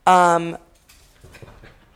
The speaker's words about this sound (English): My dogs are fighting. It's fine.